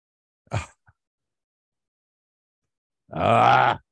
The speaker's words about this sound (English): It's okay. I'm being attacked by a beagle dog right now.